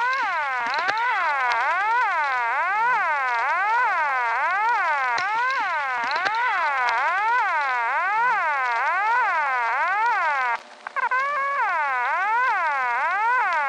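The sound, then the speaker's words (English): A siren on its own, its pitch swooping up and down in quick, even cycles roughly once a second, loud and unbroken except for a brief dropout near the end. No voices. “I'm going to play the full thing for you, Fredo, but Task Force, you're going to hear simply that siren that has been isolated.”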